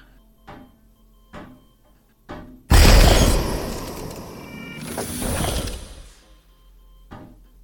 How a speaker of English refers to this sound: Well, while you're busy trying to play garden detective, I'm gonna open the other door.